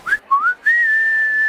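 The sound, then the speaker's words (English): A person whistles: two short rising chirps, then one long steady held note. Clear and fairly loud, with no talking. “You cannot have access to our menu items unless you can prove you are a whistler.”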